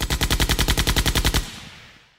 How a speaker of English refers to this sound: Please insert high-powered firearm sound effects. Let it rain.